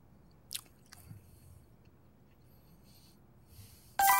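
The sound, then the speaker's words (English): Quiet chewing of a soft shell taco, the second taco being eaten, with a couple of brief sharp mouth clicks early on and soft mushy mastication after, cut off by a sudden loud burst of noise. “Taco number two, soft shell taco, done.”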